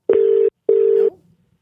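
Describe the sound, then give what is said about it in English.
Two steady electronic tone bursts from a phone line, each under half a second with a brief pause between, as an outgoing call rings on the other end. No one speaks. “Well, Let's get this leader on the phone because I'm jazzed to give him a ring right now.”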